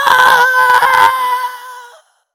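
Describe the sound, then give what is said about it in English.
A person lets out one loud, sustained, high-pitched scream. It holds for about two seconds, eases slightly near the end, then stops abruptly into silence. “And he saw the barn door start to rattle, and he saw the catch start to open, and so he stopped playing the fiddle and he gave a scream.”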